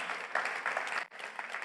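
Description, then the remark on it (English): A church audience clapping together for Hyde Park, a steady dense wash of applause that briefly dips before continuing at the same fairly loud level, with no voices over it. “Okay, we can clap. That's okay. We're a church, we can clap.”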